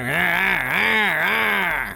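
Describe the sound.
Beavis, of the cartoon Beavis and Butt-Head, imitates a chainsaw with his mouth while a TV shows men chopping down trees, a buzzy, nasal drone that rises and dips in pitch in repeated revving swells, loud and continuous for about two seconds with no other sound.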